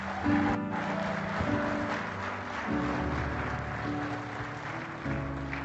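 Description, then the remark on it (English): An audience claps steadily in a dense, continuous wash of hand clapping as praise to God, with sustained organ-like chords playing underneath throughout. “give God one more hand clap of praise for this young man.”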